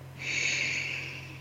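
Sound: deep breathing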